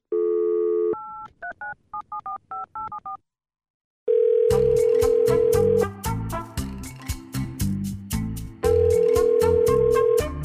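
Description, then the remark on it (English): Someone makes a phone call: a steady dial tone gives way to a quick run of about a dozen keypad beeps. After a short silence, a loud, rhythmic, busy stretch of tones follows, with no voices. “But first, I need to make a phone call.”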